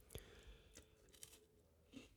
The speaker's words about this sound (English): Oh, I'm chewing on the mic, sorry.